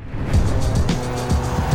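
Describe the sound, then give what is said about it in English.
A truck roars up fast, pulling up on Rabbit at the curb outside a club, its engine loud and tires squealing and skidding across the pavement for a couple of seconds, with no voices. “The truck rolled up on Rabbit fast, just like the Jump Out Boys from 17th and High Grove.”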